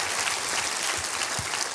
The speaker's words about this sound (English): Clap your hands and say amen to that. Amen.